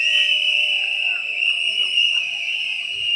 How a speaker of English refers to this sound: Whistles for David. And all the other whistleblowers.